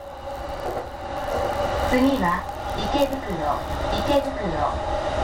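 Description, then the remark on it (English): Steady, busy ambience at Ikebukuro train station in downtown Tokyo, Japan, the second busiest train station in the world, with a low rumble of rail traffic and a murmur of many voices talking in the background, continuous and fairly loud throughout. “Ikebukuro in downtown Tokyo. It's the second busiest train station in the world, second only to nearby Shinjuku, which handles more than 3.6 million passengers.”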